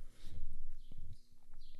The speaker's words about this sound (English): What kind of bird do you think that is making that noise? It's got to be a fucking robin.